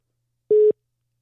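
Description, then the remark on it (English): A single short telephone busy tone, a steady mid-pitched beep lasting about a quarter second, sounds on its own after a call cuts off, with silence around it. “Dude, why'd he hang up on us?”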